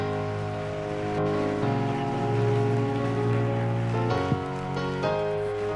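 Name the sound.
audience applause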